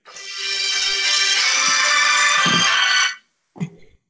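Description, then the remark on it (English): A backup phone rings loudly with a bright, sustained electronic ringtone full of buzzy harmonics, holding steady for about three seconds before cutting off, followed by a brief faint blip after a pause. “That was my backup phone.”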